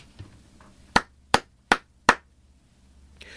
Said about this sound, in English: A free giveaway this week in the bin, an automatic clapper when you want to express your appreciation for someone doing a socially useful job but don't really have the time to do it yourself. Simply play this sound effect from your phone.